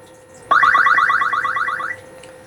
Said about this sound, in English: I like that little chime that plays when you start the game. That's pretty cool.